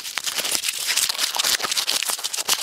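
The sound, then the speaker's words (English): A small scrap of paper being crinkled, a continuous flurry of dry, crisp, irregular crackles with bright hissy texture that pulses unevenly for a few seconds, with no voices. “Is that paper you got there? I was going to describe it as some form of tinsel.”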